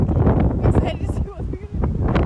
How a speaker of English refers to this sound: We're here at the new land of the Nanticoke tribe. It's very windy and the wind is blowing through some tall grass. Actually beautiful. It's actually, I think that's corn.